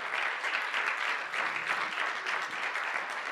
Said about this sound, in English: Come on, somebody give God a round of applause.